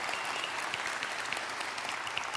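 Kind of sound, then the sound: crowd, audience applause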